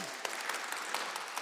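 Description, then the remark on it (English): An audience applauds steadily, many hands clapping in a dense, crackling wash with a few sharper claps standing out, fairly quiet overall and with no voices. “You can clap. It's okay.”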